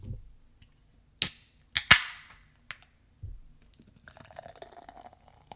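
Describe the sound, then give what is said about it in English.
A 16-ounce can of Native Prick hard seltzer from Wim's Brewing Company in Atco, New Jersey, cracks open with a couple of sharp snaps and a short hiss, followed by a quieter stretch, then fizzy seltzer pouring steadily into a Spiegelau lager glass. “I'm pouring this one from a 16-ounce can into a Spiegelau lager glass.”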